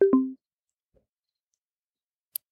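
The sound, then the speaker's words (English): Two quick low electronic tones sound at the start, then after a stretch of silence a single sharp, crisp smartphone screen lock click snaps once as the phone locks itself after a voice-control command to lock the screen. No voices are heard. “The phone has now locked itself.”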